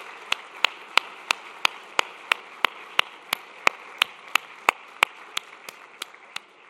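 A Christ Church audience claps for its deacons in steady unison, about twenty sharp, evenly spaced claps at roughly three per second over a faint background hiss, with no one speaking.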